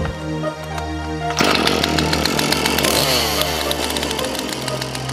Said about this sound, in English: As Paul handed the chainsaw to his son, Billy stood over the old man, not even the slightest bit of emotion on his face, as he plunged the blades into the old man's stomach, ripping him apart.